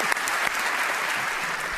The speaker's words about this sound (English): I like how he's clapping for himself. Come on, guys. Give it up. I think he's giving up to the award.